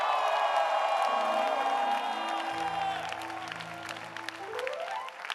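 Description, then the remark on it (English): A crowd claps and shouts for Jesus in loud, sustained applause, whoops rising above the noise, while held organ chords ring underneath throughout. “Are you clapping your hands and shouting for Jesus, somebody?”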